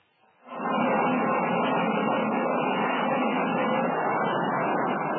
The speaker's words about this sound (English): A transoceanic airplane prepares to land on an East African airfield.